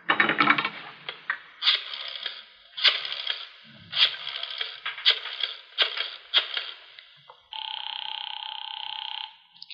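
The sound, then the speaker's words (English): A rotary telephone in a hall being dialed: a rattle of handling, then about six quick whirring, clicking bursts as the dial spins back, followed by a steady, buzzy tone for a couple of seconds. “Wonder if I might use your phone, please?”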